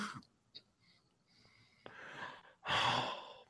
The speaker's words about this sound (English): It has sound effects. It does? Oh, it does. Yeah. Oh. It's got Darth Vader's breathing.